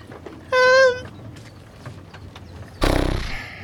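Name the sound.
person imitating a horse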